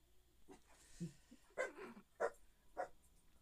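A dog lets out a few soft whines, then three or four sharp barks spaced about half a second apart, with no talking over them.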